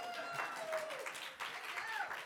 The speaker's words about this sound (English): this is an old school circus tent that my wife and I made for the sermon illustration. Applause, please.